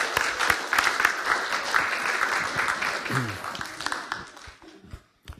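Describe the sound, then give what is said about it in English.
A crowd claps steadily for several seconds, dense overlapping hand claps with a few faint voices mixed in, then the applause thins out and fades to scattered claps near the end. “Yeah, let's give them a clap.”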